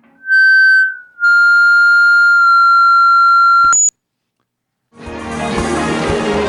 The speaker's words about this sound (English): Hey, let's just take a quick break and have the interns play some high decibel feedback into the phone to seal the deal.